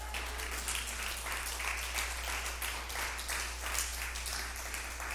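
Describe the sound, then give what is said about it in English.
A church audience claps for God steadily for about five seconds, a dense, even wash of many hands with a low steady hum underneath and no voices standing out. “We can give God a clap for that.”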